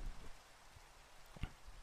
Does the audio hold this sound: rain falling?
yes